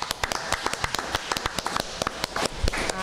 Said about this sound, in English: We want to thank all of our wonderful guests today from the demonstration of dance. Put our hands together for that.